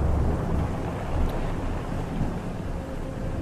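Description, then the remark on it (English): A vast gathering storm on the gray Atlantic: a steady, dense roar of wind and churning sea with deep low rumbling underneath, continuous and fairly loud with no voices. “But Emerson climbed aboard, and they sailed into the gray Atlantic right into a vast gathering storm.”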